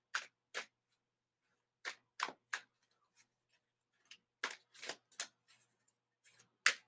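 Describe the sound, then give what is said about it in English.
A deck of tarot cards being shuffled, a series of crisp, papery snaps and flicks in irregular bursts with short pauses between them, and no one talking. “I'm good for shuffling these cards.”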